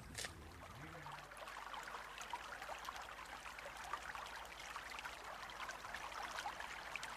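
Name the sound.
river water flowing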